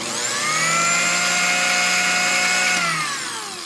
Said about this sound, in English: Now, does anyone care what their food processor sounds like when it speeds up from low to medium to high?